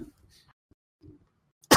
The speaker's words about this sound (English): I immediately start coughing.